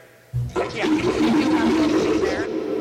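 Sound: toilet flushing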